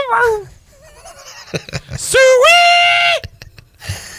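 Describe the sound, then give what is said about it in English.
A man lets out a loud, drawn-out hog-calling holler, his voice swooping up and holding a long, strained high note, after a shorter falling call and some brief laughter-like sounds. “You seem more like a pig call kind of guy.”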